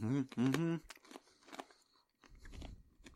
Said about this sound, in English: I'm eating fried pig's rind. You're a monster. Right. Right, before we get on, let me just chew this.